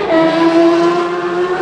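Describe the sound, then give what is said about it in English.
A Suzuki racing motorcycle ridden by Bruce Anstey screams at high revs as it sets off from the start line of a race, a loud, sustained buzzing whine holding a fairly steady pitch throughout, with no voices over it. “We count them down now, and there is Mike Crelly, who waves the flag, and we are now racing, and there goes Bruce on the Suzuki.”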